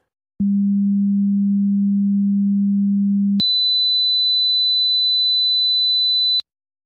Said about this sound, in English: And I'm going to do it again because I want to see what the Luft's meter shows us on these two tones.